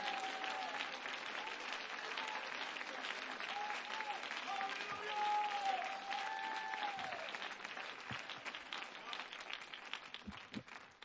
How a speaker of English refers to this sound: Come on, clap your hands. We're finally breaking something here today.